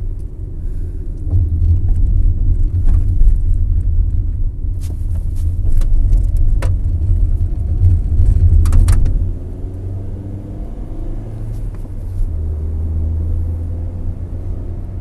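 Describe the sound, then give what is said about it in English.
A car drives along, recorded on a phone resting on the driver's lap, with a steady low road rumble that swells louder for several seconds as it passes another vehicle, then settles back, with a few faint clicks and no talking. “Sorry, I had to drive past someone.”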